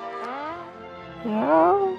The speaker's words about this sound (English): Again with the horn thing. Wow, something in that pipe is enough to knock you off your feet, apparently.